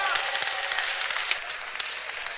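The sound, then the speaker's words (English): A crowd claps their hands for themselves during a sermon, a dense, steady wash of overlapping hand claps, bright and sharp, with faint voices mixed in underneath. “Clap your hands for yourself.”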